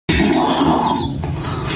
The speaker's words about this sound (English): Aw, I think that was a little fart squeaking out. Listen closely.